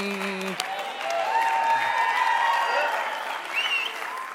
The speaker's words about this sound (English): That was... golf clap, golf clap.